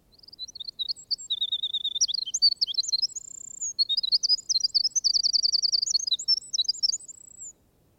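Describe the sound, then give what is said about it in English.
A ruby-crowned kinglet sings a long, rapid, high-pitched song of thin introductory notes, then bright rolling trills and chattering phrases, clear and fairly loud with no other sounds. “Wilson called the kinglets wrens, but they have little to justify the name, except that the Ruby Crown's song is of the same gushing lyrical character as that referred to above.”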